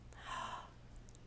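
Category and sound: human body sound, audible gasp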